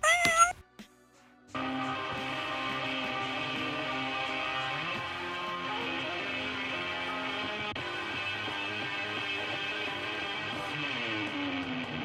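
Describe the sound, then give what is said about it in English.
A cat lets out a brief meow, then a loud, drawn-out wavering yowl that carries on steadily for about ten seconds, with no talking. “Meow, bitch.”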